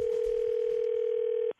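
A telephone ringing tone sounds as a single steady electronic hum, held unbroken for about a second and a half before cutting off abruptly, with no voices.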